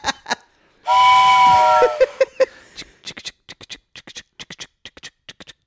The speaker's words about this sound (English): The train's coming all the way to Dick Town.